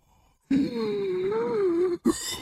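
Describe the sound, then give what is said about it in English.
Heavy, labored breathing of a man: one long, raspy, wheezing breath drawn out for over a second, then a sudden sharp second gasp. No talking. “Oh, you heard that clip where he's breathing? He's breathing every single day.”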